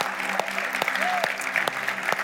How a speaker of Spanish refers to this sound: ¿Podemos darle un aplauso a todos los que se están conectando con nosotros?